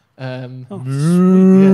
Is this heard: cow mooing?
yes